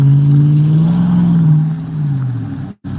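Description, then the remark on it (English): A vehicle engine drones steadily while following a truck, its low hum climbing slightly in pitch before easing back down, with a brief cut-out near the end and no talking. “We're going to follow this truck. We're going to watch in real time.”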